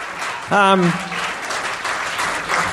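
A live show crowd claps and cheers on a performer in a steady wash of applause, with one loud whooping shout rising out of it near the start.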